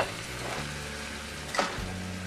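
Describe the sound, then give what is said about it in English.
Meatballs sizzle steadily in a hot frying pan beside seared chicken breast pushed to one side: a dense crackling hiss with a brief louder burst of spatter partway through and a low hum underneath. No one speaks. “I've seared my chicken breast, push it to a side, and now I'm going to add my meatballs.”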